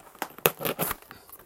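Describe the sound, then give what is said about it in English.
A knife gently slices open a package on Long Island, making a quick series of scratchy, tearing rasps with crinkling plastic or paper, irregular bursts over about a second and a half, no voices. “I do have the appropriate knife, though. I'm just going to see if I can cut this gently.”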